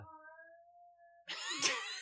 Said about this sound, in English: Our cat agrees. not our cat. My roommate's cat. Yeah. Just makes weird noises sometimes.